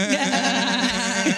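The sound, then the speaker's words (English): A single sustained, wavering bleat like a sheep's, loud, quavering for over a second with a slight rise in pitch at the end. “It sounds like a sheep.”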